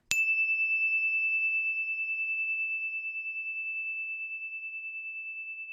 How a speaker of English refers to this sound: And what I'd like you to do is, when you hear a sound that goes ding, that's the story bell. When you hear it, put your hands in the air. When you can't hear it anymore, put your hands down, and then the story will begin. Here comes the bell.